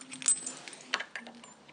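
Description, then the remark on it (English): Keys jangle as a key is left for someone, in a brief, irregular flurry of bright metallic clinks, with sharper chinks near the start and middle and quieter rattling between, and no voices. “Okay, I'll leave you the key.”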